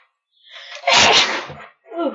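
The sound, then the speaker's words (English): A single loud sneeze with a short breathy intake building into a sharp burst, followed by a brief voiced sound after a moment of quiet. “Bless you.”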